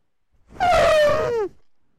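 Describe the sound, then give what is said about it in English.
A Formula One car's engine screams past in a loud, buzzy whine lasting about a second, its pitch sliding downward as it goes, then cutting off abruptly. “I'm going to say that was an F1 car. That was indeed an F1 car.”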